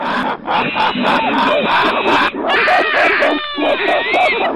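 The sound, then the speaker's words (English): A chorus of monkeys in their cages screeching together after dark, loud, shrill, overlapping wails and chattering calls that keep going with barely a pause, dipping only briefly before rising again. “As I approached the monkey cages, they raised a ruckus again.”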